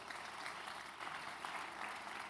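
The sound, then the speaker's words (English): A crowd applauds steadily, a dense wash of many hands clapping at an even level throughout, with no voices standing out above it. “You're clapping the signal as well.”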